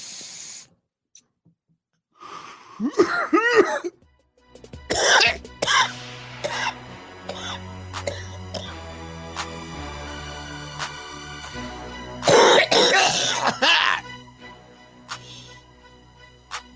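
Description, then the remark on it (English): Someone coughs and chokes in harsh, ragged bursts after taking a hit from a bong-like smoking device, with throat clearing in between and a loud fit of hacking near the end, over a steady low background hum. “So much for not choking.”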